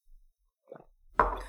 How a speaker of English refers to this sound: I will take another sip right now. Hell yeah.